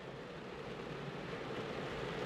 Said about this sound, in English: I can't hear you. It's raining too much. We gotta get out of the rain. I'm getting soaked.